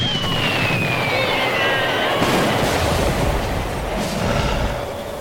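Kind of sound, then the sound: sound effect, explosions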